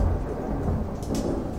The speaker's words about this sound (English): Is that real? It didn't say rain on the weather.